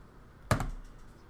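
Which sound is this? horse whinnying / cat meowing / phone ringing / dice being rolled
dice being rolled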